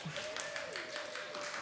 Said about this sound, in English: Thank you. Yeah, someone's clapping. Yeah, yeah.